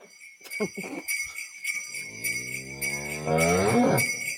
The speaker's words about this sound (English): That's a cow. That is a cow.